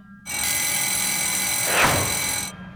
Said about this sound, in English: What is that racket? Oh no, I haven't. Mary, phone call.